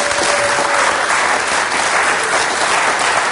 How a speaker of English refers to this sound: And let's give these guys a round of applause.